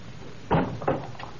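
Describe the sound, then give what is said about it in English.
A front door opens with a pair of wooden clunks, the first a bit fuller than the second, followed by a faint rattle, with no one speaking. “Somebody's at the front door.”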